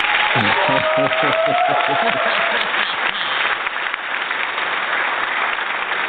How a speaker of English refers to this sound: I think the audience needs to give you a round of applause.